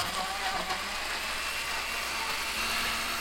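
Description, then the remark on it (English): A blender runs steadily, blending a warm, very liquid mixture with peanut butter, with a loud, even motor whir and a dense rushing hiss, holding at a constant pitch for the whole stretch with no voices. “Okay, so here goes. I'm going to blend it up.”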